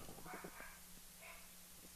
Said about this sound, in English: Is somebody there again? The dog is barking. Dog's been barking for like 10 minutes.